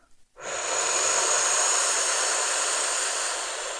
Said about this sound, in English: We're now going to continue with this, but use a mantra. We're going to inhale, so.